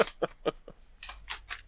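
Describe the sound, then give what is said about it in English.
Tearing open a trading card pack by hand without scissors: a quick series of short, crinkly foil rips, about seven in under two seconds, with the later pulls sounding harsher and brighter. “Yeah, because I don't have scissors or nothing, and it did not do a good tear job there.”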